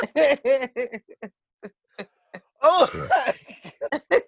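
Someone close by breaks into a coughing fit, a rapid string of harsh, raspy coughs with brief gaps and a louder, strained cluster in the middle, then more short hacks.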